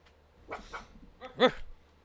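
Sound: dog barking and whimpering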